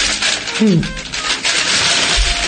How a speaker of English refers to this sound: Paper bag. Big Hollywood meeting. Oh, it's cake in a jar. Whoa. From the 101 Diner.